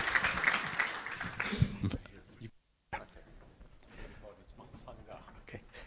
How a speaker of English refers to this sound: So why don't you give a big round of applause, please, for our next speaker talking about the future.